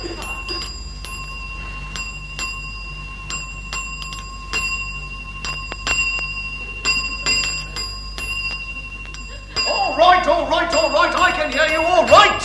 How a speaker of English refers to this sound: Stop ringing that bell, can't you? What are you talking about, stop ringing that bell? That's what the bell's for, isn't it? Dinging? Dinging? Dinging. For dinging the bell is what you think is what you got a bell for.